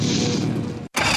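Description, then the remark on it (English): A boat engine roars loudly with a dense, rumbling drone, cuts out abruptly for a split second, then surges right back at full volume, in an advertisement for Nationwide Battery. “For over 30 years, boaters and fishermen have counted on Nationwide to fire up their engines”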